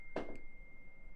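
A work phone notification sounds once, from a game of pool played through iMessage: a short, soft tonal chime followed by a faint, higher blip, then near silence with a low background hum.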